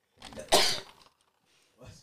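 A single close, loud sneeze: a brief breathy build-up bursts into a sharp, hissing explosion, followed by a pause and a faint rustle of breath.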